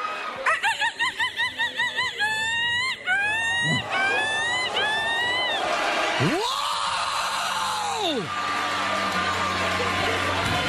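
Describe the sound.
A woman imitates a seagull with a rapid run of sharp, rising-falling squawks, then a long, swooping cry, followed by loud cheering and crowd noise.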